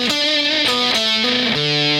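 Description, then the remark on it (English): A heavily distorted electric guitar plays a short run of about five sustained, buzzy notes that step between pitches, loud and thick with overtones, with no voices. “What about a little less distortion?”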